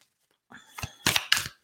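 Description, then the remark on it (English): A deck of cards being lightly shuffled before a card is pulled from the top, with a soft papery rustle that grows into two or three crisp, louder bursts of flicking cards over about a second, then stops. “So I'm just going to do some light shuffling.”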